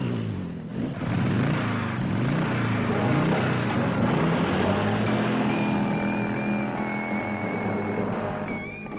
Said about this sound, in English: Now you'll know the thrill of wrapping your legs around a tornado of pounding pistons, like the girl on a motorcycle.